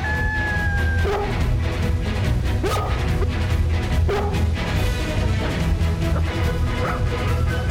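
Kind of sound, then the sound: animal, dogs barking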